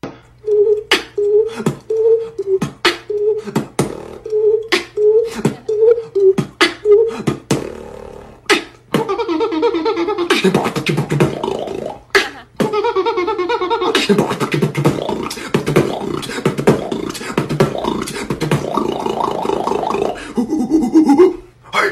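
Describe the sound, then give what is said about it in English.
A beatboxer imitates with his mouth what emojis would sound like (a ghost, a clown, a gorilla, ping pong, an airplane and a bomb): sharp rhythmic clicks under short hooting tones, then loud growling, rasping bursts and breathy, noisy effects, with no ordinary speech. “It's a guy that's beatboxing what emojis would sound like. Now, he does a ghost, a clown, a gorilla, ping pong, airplane, and a bomb.”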